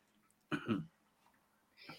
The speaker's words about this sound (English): And I swear to God, as we've been doing this show, I've gotten a cold. Like, I started coughing and my nose started running.